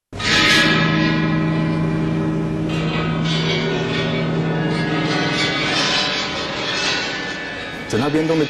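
Large bronze chime bells, a replica of the ancient chime bells of Marquis Yi, are struck in an orchestra performing Tan Dun's 1997 symphony Heaven, Earth and Man, loud and resonant. Several overlapping strikes leave deep, shimmering tones that linger and slowly fade, with a brief different sound at the very end.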